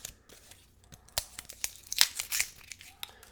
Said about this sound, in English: Okay, so let's open the bottle. Going to take the strap off.